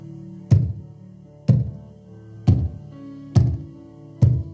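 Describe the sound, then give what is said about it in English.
Five slow, evenly spaced knocks on a door, each a heavy, resonant thud that rings out briefly, with a soft sustained low hum underneath, as David knocks at the house of Obed-Edom. “And he began to knock.”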